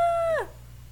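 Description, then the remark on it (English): A single eerie bird call, a strained, buzzy note held for a moment before sliding down and breaking off abruptly, fairly loud with no voices. “I thought it was, like, the recording equipment at first, like, fuzzing out. I didn't realize it was just the bird.”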